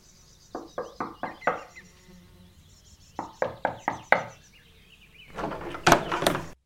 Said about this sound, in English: It says, owner absent. Please knock at the third door in the left wing. Come on, then. Let's do it.